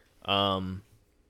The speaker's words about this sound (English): That's a CBD burp, baby. That's a CBD burp.